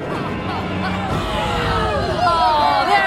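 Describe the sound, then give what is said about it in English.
A crowd gathered for a special event in the town square of Moloch, celebrating their land, murmurs steadily, many overlapping voices blending into an unbroken hubbub with no single speaker standing out, growing slightly louder toward the end. “The people were gathered for a special event, to celebrate their land and all that it meant.”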